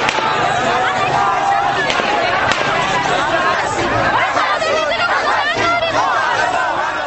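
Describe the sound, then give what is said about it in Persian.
A panicked crowd, sheltering inside a kindergarten on Mohammad Ali Jinnah Street opposite a Basij base and leaning against its door, clamors loudly, voices overlapping in urgent babble as one person shouts that they are still shooting, while a few sharp gunshot-like cracks punch through the din. “جمعیت به در تکیه می‌دهد و یک نفر در میان جمعیت فریاد می‌زند که هنوز دارند شلیک می‌کنند.”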